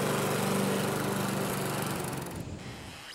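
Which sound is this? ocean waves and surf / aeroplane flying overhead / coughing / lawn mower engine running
lawn mower engine running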